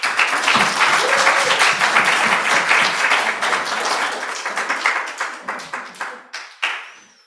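A church audience applauds with dense, sustained clapping that holds steady for several seconds, then thins into a few scattered, separate claps before fading out.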